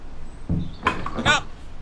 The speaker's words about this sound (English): Come on around the back door. All right. It's a little stuck. Wait a second. I can reach around.